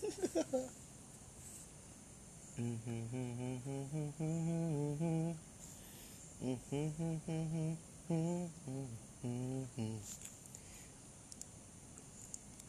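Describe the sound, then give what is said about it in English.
A single voice hums a song picked from a Spotify playlist in short phrases, pausing between bursts of tune, moderately loud with a faint background hiss. “Hum this song.”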